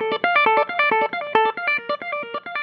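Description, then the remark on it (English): An electric guitar plays a quick run of bright, effects-laden notes, several per second with short gaps between them. The playing is loud and steady, with no voices. “And she loves playing the electric guitar.”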